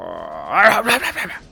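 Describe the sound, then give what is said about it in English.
A person voices the croak of a monstrous frog creature, a rising guttural roar that breaks into a few rough, throaty pulses over about a second, loud. “This bogger thing, this frog thing, is gonna look at you all and go.”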